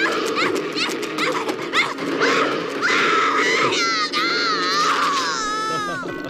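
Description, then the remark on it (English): Anguished screaming from an audio drama fills the whole stretch, several overlapping voices wailing and shrieking loudly with wavering, rising and falling pitch over a dense, crowded background. “It's so grisly. A lot of grisly screams in this one.”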